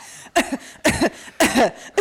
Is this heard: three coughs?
yes